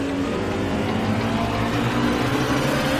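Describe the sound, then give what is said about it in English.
A race car driver, driving his car around a racetrack, vocally imitates the engine with a steady, buzzing motor drone that holds for a few seconds, loud, picked up by the in-car camera audio, with no other talking. “it ended up being … mimicking the sound of the motor as he's driving around the racetrack”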